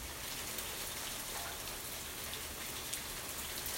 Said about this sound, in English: I wonder if you guys can hear the rain. Here, let me stand up. Let me get it. Here, listen to this.